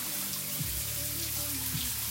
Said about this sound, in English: So what we finna do is cut this on. I hope y'all can hear me over that water.